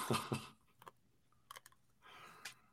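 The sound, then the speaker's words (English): Chewing of 35-year-old, brittle gum that crunches like a cracker, with several irregular crackly bites spread across a few seconds and quiet pauses between them. No one speaks. “All right, well, he's chewing on that.”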